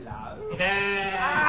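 A sheep lets out a loud, drawn-out bleat with a wavering, quavering tone, following a brief, softer bleating sound at the start, for a song-guessing segment on the Paul and Woody morning show on Hobart's Hit 100.9.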